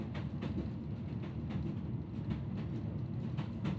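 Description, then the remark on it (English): A night train rolls steadily along the rails, a deep continuous rumble broken by regular clicking as the wheels pass over track joints, with no voices. “It was always amusing to observe other people on the night train, as he could tell who was an avid traveler and who was a novice just from a simple glance nowadays.”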